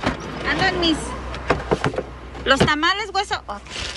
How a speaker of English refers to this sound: As we talk, a car pulls up next to us and rolls down its window. Customers picking up their order.